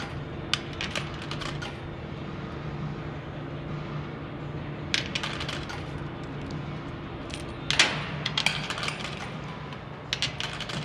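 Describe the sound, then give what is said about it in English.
Bursts of bright metallic clinks in quick clusters as coins drop and rattle into a machine, coming several times over a steady low machine hum, with short pauses between the bursts. “We need more coins.”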